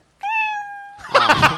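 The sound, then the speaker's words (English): A cat meow sound effect marks the end of a comedian's one-minute stage slot: a single clear meow, a steady held tone with bright harmonics, followed immediately by a louder, harsher burst like a noisy yowl or crowd reaction, all prominent with no talking. “You know that 1 minute is up when you hear that sound of a kitty.”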